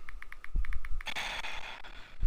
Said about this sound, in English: Buddy, typing away, goddammit. What, buddy? I'm listening. I don't want to hear you typing.